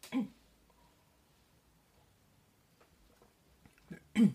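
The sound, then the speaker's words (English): Two sharp, harsh coughs, one at the start and one at the end, separated by a few seconds of near-quiet with faint rustling, caused by water going down the wrong pipe in the throat. “You know, I just got some water getting to the wrong tube, wrong pipe in my throat.”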